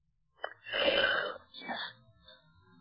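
A breathy, drawn-out yawn: a short intake, then a long airy exhale lasting about a second, trailing into a softer second breath. No words are spoken.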